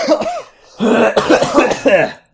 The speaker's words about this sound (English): You okay? This show's poisoning us. Yeah, both of us at the same time. We're almost done. Normally I edit out coughs, but that was the show.